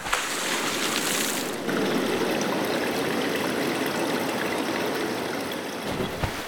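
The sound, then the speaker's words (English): Steady bubbling and trickling water runs continuously for several seconds, moderately loud, with a brief shift in texture early on and no voices. “We're going to throw out some flares underneath Confetti! The water. We're going to blow some bubbles.”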